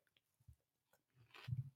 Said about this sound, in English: Do you want me to chew it as well? Just chew all of them in my mouth?